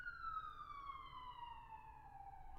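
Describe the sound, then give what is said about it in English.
A loud emergency vehicle siren wails outside in Los Angeles, its tone sliding steadily downward as it passes, with traffic rumble underneath and no talking. “I'm just going to let the sirens play for a second.”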